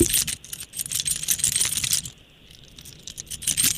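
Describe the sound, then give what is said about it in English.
Metal keys jingle and clink in bright, irregular bursts, pausing briefly in the middle before shaking again, with no voices. “That's just the sound of your keys jingling.”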